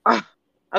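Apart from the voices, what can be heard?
sneeze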